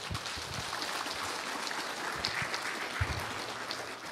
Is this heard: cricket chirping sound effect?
no